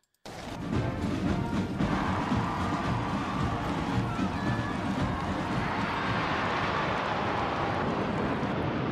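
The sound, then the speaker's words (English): A steady, loud roar of a formation of 70 aircraft passes over Buckingham Palace during the Jubilee for several seconds, mixed with wind buffeting and the murmur of a large outdoor crowd of people. “And they were in the letter, like in the formation of 70, and they flew over her head.”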